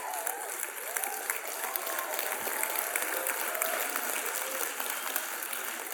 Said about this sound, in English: Also, you guys clap for them. They did not do anything.